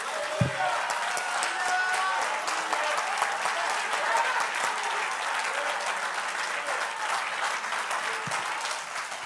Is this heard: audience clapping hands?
yes